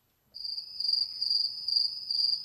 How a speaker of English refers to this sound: Is there a cricket button?